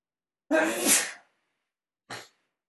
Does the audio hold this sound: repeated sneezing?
yes